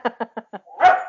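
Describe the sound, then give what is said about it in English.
A dog barks four times in quick, evenly spaced succession, then lets out a longer, drawn-out bark or whine, fairly loud with no talking. “That was a dog.”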